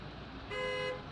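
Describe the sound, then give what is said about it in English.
A single car horn toots for about half a second over a steady rumble of cars stuck in a traffic jam on a busy London road, clear, with no voices. “Although this alley is bookended by two of London's busiest roads, as long lines of cars stuck in traffic jams belch great plumes of polluted fumes, with horns tooting, engines revving”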